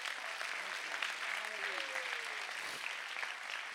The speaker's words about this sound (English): Clap your hands if you got the joy of the Lord.